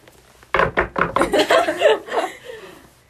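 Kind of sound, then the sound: impact, knuckles knocking on wood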